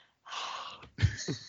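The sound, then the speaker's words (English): A breathy open-mouthed exhale like fogging a mirror, about half a second long, followed by a second rougher huff of breath. A voice imitates the breathing; no words are spoken. “Just imagine a person breathing onto a mirror, like.”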